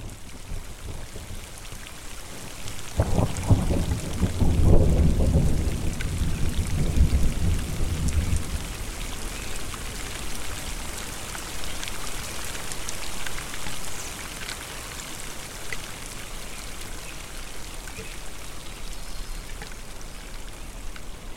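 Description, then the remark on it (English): Steady rain from a thunderstorm patters down among ponderosa pine trees on a slope. A deep rumble of thunder rolls in early, swelling for several seconds before fading back into the constant hiss of the downpour. “When the storm has passed and the trees have stilled, I thank the Ponderosa and walk down the trail toward camp.”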